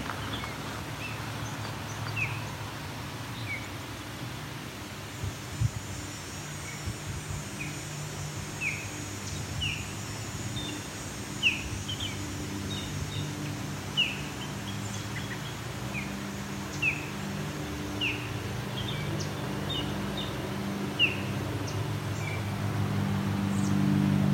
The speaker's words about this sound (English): Osprey starts vocalizing proper Osprey calls. I think he or she is done now. Nope, there we go. These are loud birds because it's probably half a kilometer from me. Let's say a third of a mile.